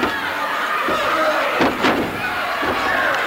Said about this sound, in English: Sakuna scooping back and hammering him down to the canvas once again.